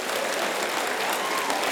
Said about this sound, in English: Clap your hands because you knew it.